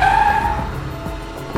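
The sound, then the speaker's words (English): A taxi's tires screech loudly as it pulls up right in front of the Science Museum, in one sharp, high squeal lasting about half a second, followed by the low rumble of the idling taxi. “You gotta love a convenient taxi. It just pulls up right in front of the Science Museum when she needs it.”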